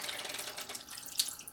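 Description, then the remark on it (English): Film developer liquid pours steadily in a continuous splashing stream as it is emptied out after developing FP4 film, with a brighter splash near the end and no voices. “So let's start pouring out.”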